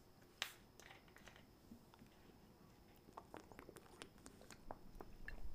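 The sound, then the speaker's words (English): Quiet sipping of a watermelon syrup and water mixture, with a scatter of small wet clicks and mouth noises over faint background hiss and no talking. “So yeah, I'm going to take a sip out of my watermelon syrup and water mixture.”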